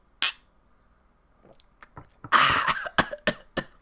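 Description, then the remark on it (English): A single bright clink of glasses in a toast with Jose Cuervo tequila at home rings briefly at the start. After a pause come soft clicks, then a breathy burst of noise and a few sharp taps. “So yeah, cheers! Cheers up!”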